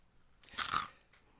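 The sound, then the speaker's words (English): A single crisp crunch as someone bites into a chip, a sharp brittle burst lasting about half a second, then a faint trailing crackle in near silence. “I did it this time. That was great. I love it. Crunch.”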